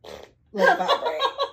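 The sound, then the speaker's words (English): A person blows a wet, sputtering raspberry with their mouth to imitate a dog's fart, a short breathy burst followed by a longer buzzing splutter, fairly loud, with a hint of laughter. “That was with my mouth.”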